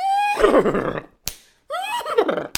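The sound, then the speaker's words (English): A horse whinnies twice in warbling, falling cries, each followed by a sharp, loud slap, clear with no talking. “Hate to beat a dead horse to death, you know?”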